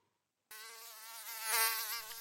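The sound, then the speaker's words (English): A mosquito's high, thin whine starts abruptly and hovers, swelling louder for a moment as if passing by, then holding steady. “Are you one of those people that mosquitoes are just drawn to?”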